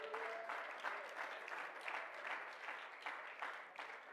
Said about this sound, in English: Oh, let's clap our hands and praise Him.